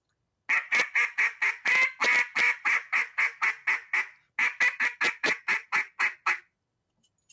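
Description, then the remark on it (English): A goose call used for goose hunting is blown in a sharp, fast cadence, about twenty loud honks in two rapid bursts separated by a brief pause, with no voices. “something real sharp, real fast cadence, like a little bit of excitement, you know.”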